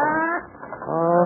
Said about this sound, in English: What's that? You make very bad talk back, Honorable Parrot.